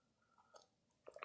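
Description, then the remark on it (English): A brief slurping sip of hot coffee, a few soft wet mouth sounds building to a louder slurp at the end, with no talking. “Coffee sip.”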